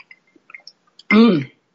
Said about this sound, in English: Let's have a sip of this vodka and see.